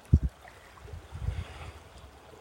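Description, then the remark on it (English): Tidal water of the North Atlantic ebbing out of a large bay, slowly draining out into the sound, which pours out into the sea; a soft steady wash with low, muffled surges and a couple of brief thumps near the start, fairly quiet and with no voices. “I mean, it's not little, it's quite big, but it's now slowly draining out into the sound, and the sound is pouring out into the sea.”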